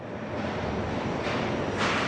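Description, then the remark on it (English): A subway train rumbles steadily into a station, a dense, loud roar of wheels and machinery with hissing brake noise rising near the end. “As the train pulls to the platform”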